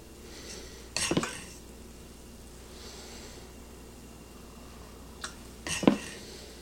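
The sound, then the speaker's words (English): Two short bursts of crackling sizzle as food is loaded into a hot waffle maker to make waffles, with clattery metallic handling sounds between them over a low steady background hiss. No one speaks. “Start loading this thing up. You can hear that sizzle.”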